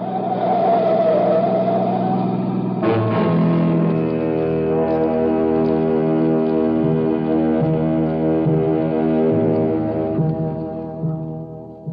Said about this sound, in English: Alone at last on Pier 17, Hoboken, a banana boat was whistling hello to the USA.